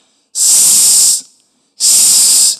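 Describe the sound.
Two long, loud hissing 's' sounds made by a voice, each lasting close to a second with a short pause between, imitating a snake's hiss: the sound of the letter S, as in 'snake'.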